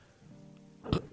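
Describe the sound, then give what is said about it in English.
A single burp: a low, rumbling, voiced croak that ends in a short, louder breathy burst. No one talks. “Take a shot, those of you out there who take a shot when I burp.”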